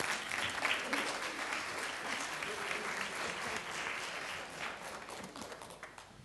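An audience at a Pentecostal church gathering applauds steadily for several seconds, a dense, even wash of many hands clapping that tapers off slightly toward the end.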